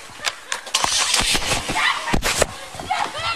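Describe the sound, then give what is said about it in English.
A car engine revs as the vehicle pulls away from a house, mixed with sharp knocks, rustling and muffled voices in a chaotic scene. “He's pulling away from the house right now.”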